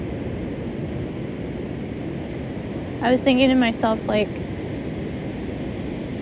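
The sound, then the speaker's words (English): Steady ocean surf rushes and hisses on a beach from start to finish, a constant wash of waves, while a person speaks briefly partway through over the roar. “Gaia’s Gift at The Beach”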